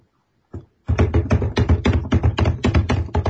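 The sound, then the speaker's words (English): Loud, rapid keyboard typing clatters in a dense, uneven burst of clicks after a brief tap, continuing steadily with no voices. “Infect all of you with super loud keyboard.”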